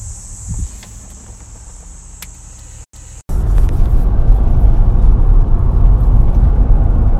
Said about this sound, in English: You guys can hear that buzzing sound. Those are cicadas.